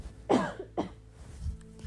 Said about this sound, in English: I was thinking about dust and then I had to cough.